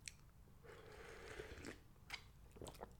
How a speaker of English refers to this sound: Going for coffee. Going for a quick sip of coffee.